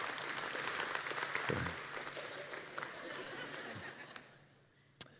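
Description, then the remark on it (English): An audience breaks into steady applause, a dense wash of clapping with a few murmuring voices and chuckles mixed in, lasting several seconds before tapering off quickly. “oh, yeah, no, you can clap for them.”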